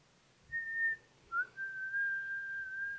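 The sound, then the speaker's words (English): A person imitates a whistle: a short steady note, a brief pause, then a quick upward chirp that settles into a long sustained whistle, clear, with no talking. “And then they whistled at me.”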